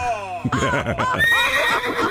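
A horse neighs loudly, a single drawn-out whinny with a shaky, wavering pitch that rises and then trembles down over about two seconds, with no one talking.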